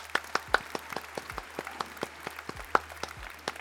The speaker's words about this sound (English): Gentlemen, that is going to be a show. Let's clap things out.